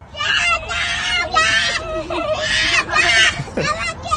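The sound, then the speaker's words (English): A little boy screams on a playground in loud, shrill bursts, several in quick succession, yelling in a little girl's direction, with faint background noise from the playground. “That's a little boy. He's yelling at... So he's screaming in her direction”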